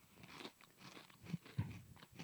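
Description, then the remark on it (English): Crunching as a crisp snack is bitten and chewed, a series of sharp, brittle crackles repeating in an uneven rhythm, with no talking. “Good crunch. There's some bite.”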